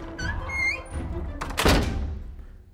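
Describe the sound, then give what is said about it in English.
A door hinge creaks in a few rising squeaks, then the doors shut with a solid, fairly loud thunk that echoes briefly before fading. Nobody speaks. “Viola backed out slowly afterward, riven with worry for her princess, and closed the doors.”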